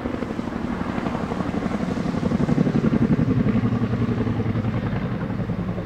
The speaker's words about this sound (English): this chest-shaking thump of a chopper is oppressive